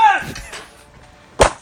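A wooden chair smashes and breaks apart: a couple of splintering cracks at first, a brief lull, then one loud, sharp crash near the end.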